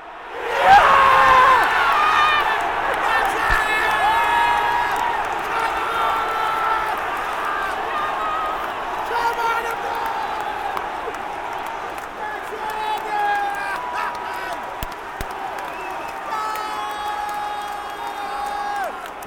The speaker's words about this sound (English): Moment when the drumming stops, when the singing pauses, when there's a held breath. The crowd in unison anticipates something. A ball fizzed into the box and